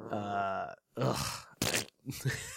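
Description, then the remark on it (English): A voice makes a string of fart noises with the mouth: a long buzzing low blat, then three shorter sputtering bursts, one noticeably hissier, with brief pauses between. “Fart noises, right?”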